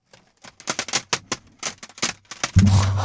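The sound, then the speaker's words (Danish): A large collection of plastic CD cases is shuffled and knocked together, producing a rapid series of sharp clacks and rattles that ends in a heavier, sustained clattering slide. “Og hvis jeg lige rører ved den, så kan man jo høre, hvor stor den er.”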